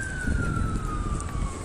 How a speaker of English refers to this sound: Is that coming for us? No, it's not. It's all right. It's a fire engine.